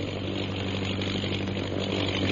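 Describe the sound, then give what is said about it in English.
A propeller fighting plane with a mounted gun circles overhead, its engine droning steadily, a continuous buzzing hum with a low throbbing tone that holds constant without pause, with no voices. “Listen. The plane, it's coming back.”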